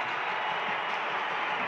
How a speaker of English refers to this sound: And the crowd loves it.